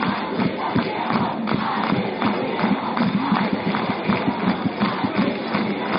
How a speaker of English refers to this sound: Laingsburg cheering section. Impressive to say the very least.